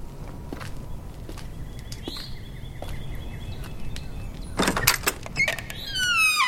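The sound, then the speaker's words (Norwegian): A squeaky door hinge creaks with thin, high-pitched whines, ending in a drawn-out rising squeal, mixed with a few knocks and rattles over a low background rumble. The door needs oiling. “Døra der trenger å bli smurt litt.”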